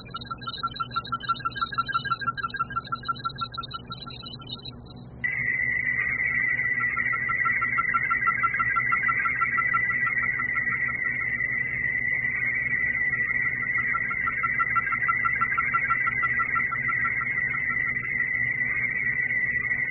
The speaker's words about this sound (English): There's another set of tones during this Fibonacci sequence.